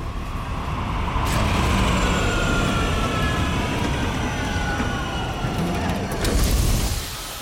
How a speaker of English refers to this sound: From the downpour above, the deafening whir of a PD spinner falls toward the alley, drowning out the bustling crowd as they scatter, allowing it to land.